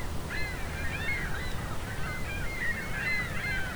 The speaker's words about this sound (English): These gulls are rather incessant.